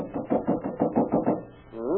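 A quick run of about seven sharp knocks on the locked wooden door of a Tong headquarters, evenly spaced, followed by a brief voice-like sound as the knocking stops.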